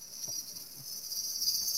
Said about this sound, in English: I can hear the cicadas. Is it behind you? Yes, they're winding up now.